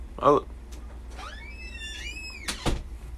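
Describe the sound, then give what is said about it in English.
A door creaks with a rising, squeaky hinge sound, then shuts with a solid thud near the end. There's a short knock or bump just before the creak begins. “Close the door for me.”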